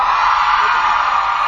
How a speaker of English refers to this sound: Okay, I'm gonna ask again. I really like doing this, but please scream as loud as you can. Can I hear it from my single sisters?